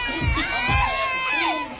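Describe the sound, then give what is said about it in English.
A crowd of girls in Mardi Gras pants and beads, holding Stanley cups, sings along, cheers and dances to a DJ at a Chevron station, high voices sliding in pitch over a steady roar, with a few sharp bursts of shouting rising above the din. “They're all holding their Stanley cups. Singing along, dancing.”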